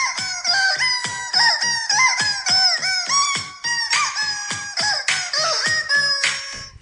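A rubber chicken squeaks out a rapid tune, loud, shrill honking notes in quick rhythmic bursts that jump up and down in pitch, played close up with no talking.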